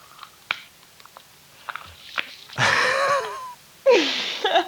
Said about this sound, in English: I was yawning.